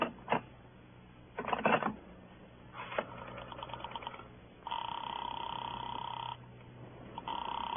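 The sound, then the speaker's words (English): Telephone line clicks and rattles as a call is put through to Sing Sing, followed by a steady buzzing ring that sounds in long bursts, fairly loud, with no voices. “I got to put through a call to Sing Sing.”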